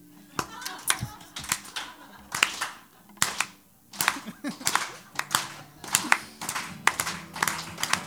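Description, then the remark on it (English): A small crowd at a live show claps in a slow, uneven rhythm, sharp hand claps arriving a couple per second and steadily continuing, with faint voices murmuring underneath. “Let's start a slow clap.”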